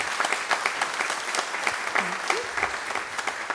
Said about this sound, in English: That's all of our children. Will you please give them a round of applause, please?